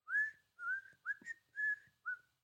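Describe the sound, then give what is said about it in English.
A person whistles a short melodic tune from a movie, a series of about six clear, sliding notes in a steady rhythm, with no talking. “Originally, when I heard when I just played the Kill Bill thing, I was thinking about the whistle.”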